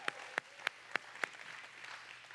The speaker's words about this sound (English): Come on, let's give a great big round of applause.